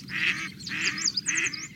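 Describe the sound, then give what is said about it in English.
A flock of canvasback ducks, gathered by the thousands to feed on wild celery at the Detroit River International Wildlife Refuge, calls in three loud, harsh bursts, each roughly half a second long, with higher chirping calls overlapping from other birds. “Canvasbacks, handsome ducks with chestnut heads and pale gray backs, gather here by the thousands to feed on wild celery.”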